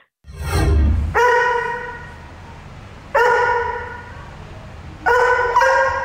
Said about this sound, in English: Oh, interesting. The dog going through puberty. A little bit of a voice break at the end there. All right, that's 100% a Labrador.